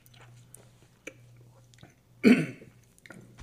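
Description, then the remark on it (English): One sharp, forceful cough bursts out after a quiet stretch, as someone coughs after sipping a spirit during a tasting, with a few faint clicks and a steady low hum in the background. “It's cough inducing.”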